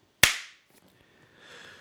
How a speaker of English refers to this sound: All right. It's your intro. You want to do another clap? Oh, yeah.